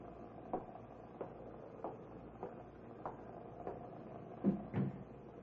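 door opening and closing

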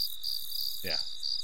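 crickets chirping

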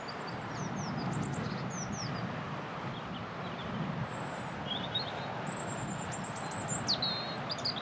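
robin singing

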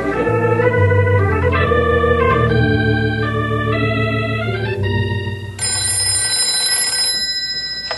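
telephone ringing

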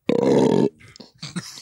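burp into a microphone

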